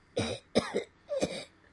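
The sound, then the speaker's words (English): Three short, muffled coughs in quick succession, held back and stifled rather than loud, with no talking, as a person who is sick with a tickle in the throat demonstrates a suppressed cough. “It's one of those things where it's the worst time because you know that you can't really cough loud.”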